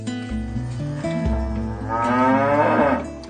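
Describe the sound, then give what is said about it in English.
A Hemorrhagia cow, a breed from Sudan, moos loudly, one long drawn-out low call that swells and rises in pitch toward the end, with faint background noise beneath it. “This is a very special breed of cow.”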